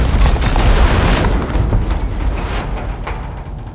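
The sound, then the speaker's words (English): A layered movie sound-effect explosion built from several elements: a deep booming thump with rumbling low end, mid-range and high frequencies, and crackling debris, starting loud and slowly decaying over a few seconds, with no voices. “And then here's what a movie explosion sounds like.”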